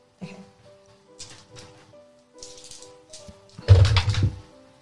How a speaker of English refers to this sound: I'm going to get you to make an athletics check to push them across. The challenge level is going to be 2. Okay. And you have 5 dice to roll.